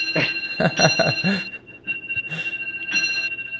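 A clock strikes the hour, its bright metallic chime ringing out in sustained, overlapping tones that linger and fade, with a faint voice murmuring underneath at the start.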